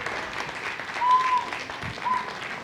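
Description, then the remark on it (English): A crowd of parents, grandparents, friends and family applauds steadily, a dense wash of many hands clapping at once, with a few faint whistles rising briefly above the noise and a slight swell in the middle. “Let's just clap for this.”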